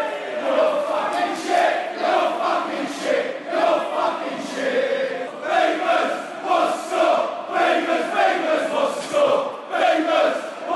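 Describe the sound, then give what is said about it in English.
A Millwall football crowd chants together in a stadium near the end of a match: a loud mass of voices singing in steady, rhythmic pulses that rise and fall repeatedly for about eleven seconds, with no separate talk. “Nothing like a Millwall crowd to tell you, remind you of past errors of judgment, as they say it.”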